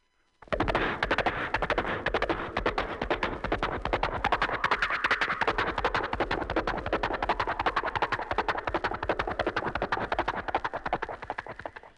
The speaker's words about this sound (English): Now let's bring the horse up to a gallop.